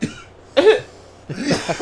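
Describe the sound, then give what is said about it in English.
A few harsh, breathy coughs from a man in quick succession, fairly loud, with short pauses between bursts and no talking. “And then he coughed.”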